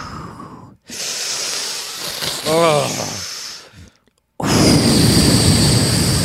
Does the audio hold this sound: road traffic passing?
no